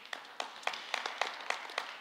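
A church audience claps together in a steady, even rhythm, about seven sharp, bright claps over two seconds, with a softer wash of scattered clapping filling the gaps between beats. No one speaks.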